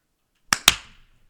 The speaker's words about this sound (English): The three of us are going to start every episode with a synchronized clap, but we're not going to count down to do it.